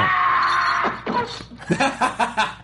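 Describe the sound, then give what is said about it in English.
A man, Bond, lets out a loud, sustained scream lasting about a second as he is chopped, which breaks off into a string of short, rhythmic vocal bursts like panting or laughter. “Because out of context, it just sounds like he screams and just fall, like this epic, like, I'm going to kill you.”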